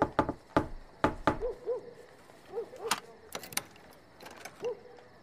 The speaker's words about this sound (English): Try knocking on the shop.